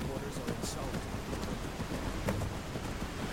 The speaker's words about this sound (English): I couldn't watch the storm that's tearing everything apart.